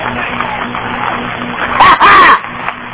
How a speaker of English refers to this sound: I want you to give God a Thanksgiving week hand clap if you know you're saved and you're glad of it.